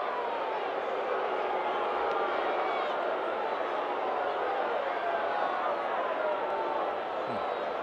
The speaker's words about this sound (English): Long discussion. Crowd getting restless.